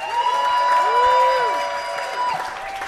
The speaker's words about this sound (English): And without further ado, how about a round of applause for the winner of the 2018 Polaris Music Prize